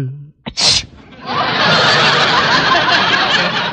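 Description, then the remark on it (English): A quick, sharp sneeze, apparently voiced by a person imitating a frog, the prize frog McDougal, who has a sore throat and a cold, bursts out after a brief intake of breath, then gives way to a long, steady, breathy hiss that fills the rest of the moment. “Gesundheit. Have a Kleenex, Mac.”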